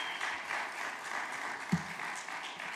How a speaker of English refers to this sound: So big applause for Dr. Vern.